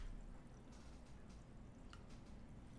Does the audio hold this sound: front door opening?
no